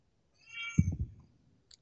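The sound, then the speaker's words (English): A single short cat vocalization, fairly quiet, mixed with a low rustling thump, then a tiny click near the end. No one is talking. “And the cat of doom. Doom cat.”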